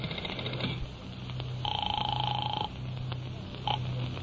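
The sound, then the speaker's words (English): A phone is dialed with a few faint clicks to call a hotel, then rings with one long electronic trill and a brief second burst over a low background hum. No one speaks. “I'll tell you what I'll do. I'll phone the hotel.”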